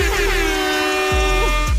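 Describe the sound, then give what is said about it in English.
A loud, sustained air horn sound effect, played on the Mix 106.5 morning radio show for Purple Friday, blares for nearly two seconds, its brassy harmonic tone holding steady with brief pitch dips near the end, alone without any talking. “I feel like we need an air horn for that one, right?”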